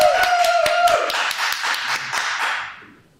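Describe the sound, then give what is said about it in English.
A short burst of audience applause welcoming a guest onto the stage of the show In My Mug: a sparse group of crisp, distinct hand claps patters steadily at first, then thins out and fades away after about three seconds. “We get a round of applause, please.”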